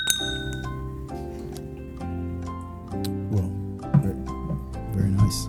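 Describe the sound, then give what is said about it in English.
Glasses of rum clink together in a toast, several bright ringing taps spaced roughly a second apart, their tones lingering briefly over low murmuring voices. “If we're going to be diving into bad evangelicalism, cheers.”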